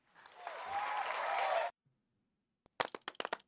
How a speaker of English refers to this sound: There you go. No, fuck that. We need a lot louder clap than that, all right?